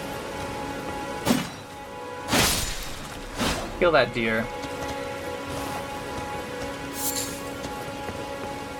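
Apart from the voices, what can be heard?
rain falling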